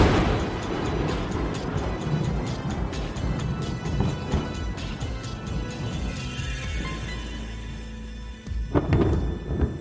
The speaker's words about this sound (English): I want like a lightning bolt to end it.